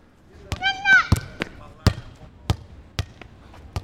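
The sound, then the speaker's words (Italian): A small child playing with a green ball bounces it repeatedly on hard pavement, about nine sharp thuds in an uneven rhythm, with a brief high-pitched voice calling out near the start. “Vedo un bimbo piccolo piccolo con dei capelli biondi e ricci giocare a palla.”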